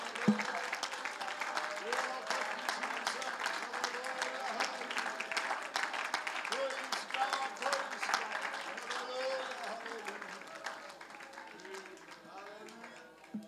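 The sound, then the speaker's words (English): An audience in church claps their hands to praise God in a dense, sustained burst of applause, with voices and cheers mixed in throughout, gradually tapering off near the end. “Can we clap our hands to the Lord and give God praise?”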